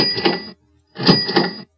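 A cash register rings twice in quick succession, two bright metallic bursts separated by a short gap, the second slightly louder, heard alone with no voices.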